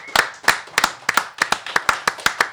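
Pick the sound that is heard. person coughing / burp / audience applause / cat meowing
audience applause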